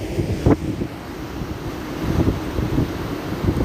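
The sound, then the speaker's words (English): Ocean surf rumbles steadily along the shore by the water in San Francisco, a continuous low wash mixed with heavy wind buffeting against the microphone, with a brief thump near the start and no voices. “Okay, I'm by the water, and I don't know if you can hear the ocean.”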